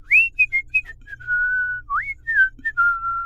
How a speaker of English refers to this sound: A few moments later, there was a loud thump, and then … walked out of the square whistling.